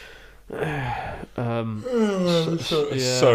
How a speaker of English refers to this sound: Sorry to yawn there